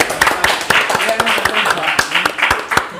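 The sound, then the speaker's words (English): A small group of people claps unevenly and steadily for a few seconds, fairly loud, with some voices talking underneath the applause. “Wait, everybody clap.”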